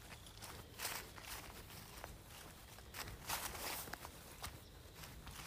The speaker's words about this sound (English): A little bit faster steps, maybe, as I'm going down.